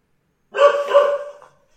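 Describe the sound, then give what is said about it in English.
A pet dog lets out two quick, loud barks that run together in a short burst, with no one talking over them. “My dog apparently really hates this conversation.”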